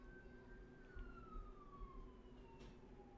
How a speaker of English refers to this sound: And I went through a list, mentioned pray for the, I hear a ambulance or a fire truck going down the road now.